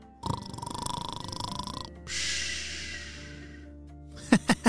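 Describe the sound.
A voice mimics snoring: a long, rattling inhale followed by a breathy, whistling exhale, then three quick, sharp vocal pops at the end.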